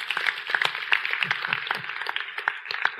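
An audience applauds steadily, a dense patter of many hands clapping at a fairly even level for the whole stretch, with no voices standing out above it.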